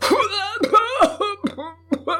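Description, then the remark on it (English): A voice imitates an old man's slight bout of coughing in bed after a gummy grin: a handful of short, rough bursts in quick irregular succession, each trailing into a throaty voiced sound. “With his dentures in a glass jar beside the bed, the old man grinned a gummy smile, which ended in a slight bout of coughing.”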